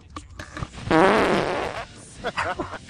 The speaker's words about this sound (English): like, that was in the air, but that was in, like, the bubble and farted. Like, it's, oh my god, it's so gross.